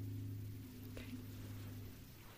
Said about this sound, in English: Must be a huge truck outside.